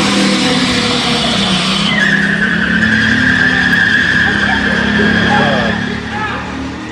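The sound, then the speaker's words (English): A car's tires spin and squeal steadily over a loud, sustained engine roar after it crashed through a brick wall into the St. David's Medical Center emergency room, the high whine holding for several seconds before easing off, with faint voices murmuring underneath. “And the wheels keep spinning.”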